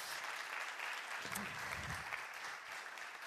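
Steady audience applause fills the whole stretch, a dense wash of clapping from a crowd, fairly loud and continuous, with a brief low murmur partway through.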